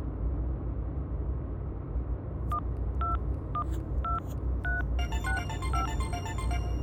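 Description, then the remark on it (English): Five crisp telephone dialing tones beep in an uneven sequence over a low, steady rumble, then a rapid warbling hailing signal starts up and continues to the end. “No, that's a hailing signal.”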